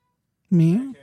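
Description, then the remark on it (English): A single drawn-out meow, voiced by a person imitating a cat, close and fairly loud, with a slight rise and fall in pitch before trailing off. “Meow.”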